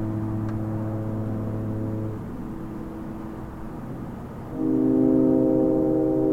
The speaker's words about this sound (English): Well, that was good. That was nice and deep and resonant. You like that? Low notes. Like foghorns, there's a low note for you.